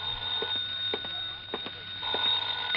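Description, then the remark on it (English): An old-fashioned telephone bell rings continuously, a bright, high metallic trill with a rattling clatter and a few sharper strikes along the way, fairly loud and heard alone without any talking. “Then I packed a bag, was about to take off, and the phone rang again.”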